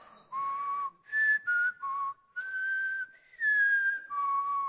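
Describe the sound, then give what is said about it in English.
Someone whistles a simple tune in a series of clear, sustained notes that slide between pitches, fairly loud, with short pauses between phrases and no talking. “Can you whistle? Whistle with me.”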